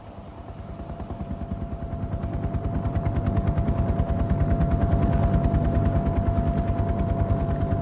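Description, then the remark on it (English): The rotors of Marine One, the helicopter President Nixon boards after shaking hands with President-elect Gerald Ford, thump in a rapid, steady rhythm with a constant engine whine, swelling gradually louder over several seconds, with no voices. “His arm obscures his face a moment as he turns and enters the helicopter.”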